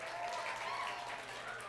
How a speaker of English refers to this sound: Thank you, guys. Y'all can have a seat. Let's give them a hand clap of thanks.